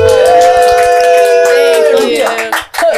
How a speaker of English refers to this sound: So if everyone in the room could please give a warm round of applause